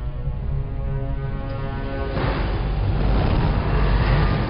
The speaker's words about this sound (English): I really do like the sound effect they use for the engines. Very organic, not just the constant roar.